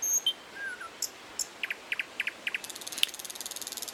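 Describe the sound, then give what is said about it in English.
Small birds chirp in short, quick notes, several paired chirps repeating in a loose rhythm, with a faint steady insect-like trill building toward the end. Fairly quiet, no voices. “Let me get some birds, you know what I mean?”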